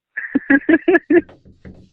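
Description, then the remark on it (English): A cat rattles a broken door: the loose door rattles and thumps in a quick run of five loud, evenly spaced knocks, then several softer, scattered taps as the rattling fades, with no voices. “This cat is not leaving this stupid door alone. I know! It's broken! It's a broken door!”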